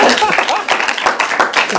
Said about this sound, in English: There's great people that go to this church. Amen. Amen. Clap for each other or something.